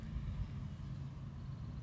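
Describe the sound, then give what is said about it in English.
A car's low engine rumble holds fairly steady and moderately quiet for the whole moment on top of a hill, a muffled drone with no clear approach or fade and no voices. “Oh, here's another car.”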